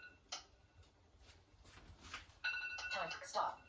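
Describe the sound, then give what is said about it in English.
Faint scattered ticks give way to a bright, electronic timer alarm from an iPad used as a kitchen timer, a repeating high-pitched chime pattern that rings loudly through the last second or so. “So I'm going to check the iPad just in case we didn't hear it while we were pausing. And it says... 4:21 p.m. 4:21 timer.”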